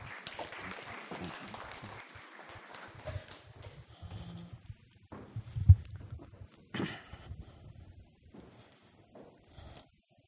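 An audience applauds, a dense wash of clapping for the first few seconds that thins into scattered claps, thumps and shuffling movement before fading out.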